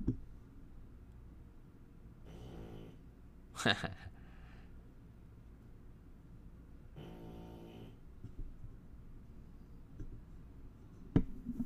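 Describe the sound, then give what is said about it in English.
A dog snores quietly, two drawn-out rasping breaths several seconds apart, with a couple of sharp knocks and faint rustling in between. “I don't know if you can hear the doggy snoring.”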